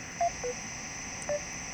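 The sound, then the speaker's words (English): A phone emits three short electronic beeps at different pitches, quick and chiptune-like, resembling retro video game tones like Q-bert, heard clearly over a steady background hiss with no talking. “It's beeping at I know, it's like doing a Q-bert thing. It's my phone.”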